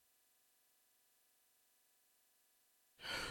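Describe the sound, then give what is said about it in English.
Near silence for a few seconds, then a sudden loud, harsh breath, a rough, raspy exhalation at the very end. “There is harsh breathing.”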